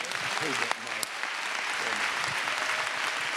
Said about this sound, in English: Y'all give her a hand clap.